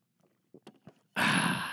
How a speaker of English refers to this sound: But first off, I'm going to take a sip of this fine high-quality H2O.